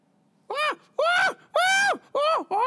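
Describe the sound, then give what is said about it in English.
A person imitates a monkey call with five loud, rhythmic hooting cries, each rising and then sliding down in pitch, with short pauses between them and no other speech. “That's a monkey.”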